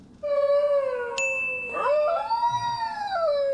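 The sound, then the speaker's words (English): A single long, wavering dingo howl rising and falling in pitch, sustained for several seconds with a slight break midway, clear with no talking. “They sound like whales. They do. They howl like motherfuckers.”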